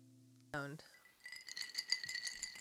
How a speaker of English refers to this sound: It's like jingle bells. It's the best sound in the world. It's ice in a glass with a little bit of alcohol. Or a little bit of alcohol with ice. I don't know how you want to say it. A little bit of ice with alcohol.